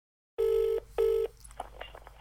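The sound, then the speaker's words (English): A telephone call being placed to the Blue Arrow taxi company: two long, steady, buzzy electronic tones in quick succession, followed by a few faint clicks and line noise, with no one speaking. “So I called a taxi company.”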